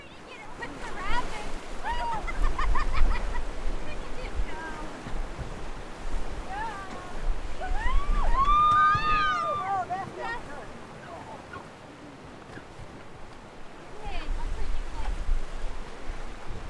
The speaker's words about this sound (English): While there is the simple joy of floating down a river, the conversations that you can have on the water, the views, the smells, all of that.